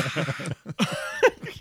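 A short fit of coughing: several rough, breathy bursts in quick succession, some with a raspy voiced edge, moderately loud, with brief pauses between them.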